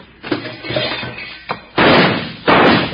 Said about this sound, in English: Knock out that lamp and get on.